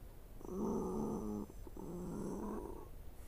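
Two long, ragged breaths rasp and rattle, an inhale and exhale with a guttural, snore-like growl, separated by a brief catch. No voices, just the strained, labored breathing of a wounded creature with a sword stabbed through its chest, multiple stab wounds and burns.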